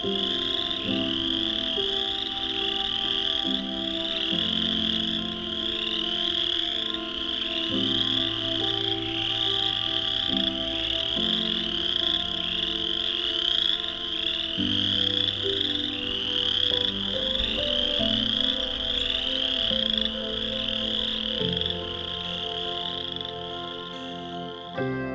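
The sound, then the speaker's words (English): A dense chorus of chorus frogs calls continuously in the Vine Mount Swamp east of Hamilton, Ontario, on an evening in late March 2021, many overlapping trilling croaks blending into a steady, loud wall of sound with some individual callers standing out. “An Evening With Chorus Frogs”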